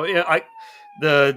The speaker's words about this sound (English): Oh, what I love about this is I can hear the police sirens in the background, like they're responding to the scam right now as we speak.